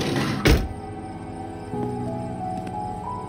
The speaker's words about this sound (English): I heard him step back out, felt the van shake, and listened to the door slam shut.